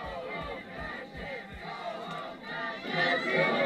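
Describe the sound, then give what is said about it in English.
A large crowd at a protest against LGBT content in schools cheers and shouts together in a sustained roar as children stomp on pride flags, with a few rhythmic low thumps early on, the noise swelling louder toward the end. “During the protest, kids from Muslim families fed up with gender indoctrination in their classrooms stomped on pride flags, garnering cheers from the crowd.”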